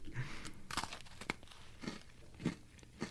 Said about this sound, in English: Can y'all hear that crunching? This is not good, whatever this is. I don't like this. This tastes like a dog treat.